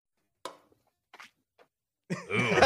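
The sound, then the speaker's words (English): Wet swallowing sounds: three short gulps spaced apart in near silence, followed by a loud, drawn-out vocal exhale. “We heard every bit of you swallowing that.”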